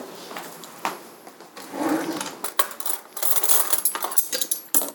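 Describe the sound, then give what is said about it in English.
Metal cutlery clinks and rattles as a fork is taken out, with a series of sharp, bright jingles and clatters over about five seconds, no talking. “I got a fork out, I didn't mean to.”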